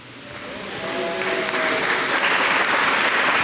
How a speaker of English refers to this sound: I didn't ask you to clap, so if you are doing, do it better.